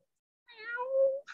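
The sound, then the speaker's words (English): A person imitates a cat with one drawn-out meow that slides from high to low, followed by a brief higher-pitched yelp at the end. No other talking. “I think that would just be so fun, just like meow.”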